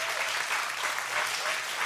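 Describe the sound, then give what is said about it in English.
Steady, dense applause from an audience for the people joining from the Wyoming campus, Alaska and the Johnson Street warming shelter. It is a continuous crackle of many hands clapping at an even level throughout, with no voices standing out. “And so will you give all of them a round of applause?”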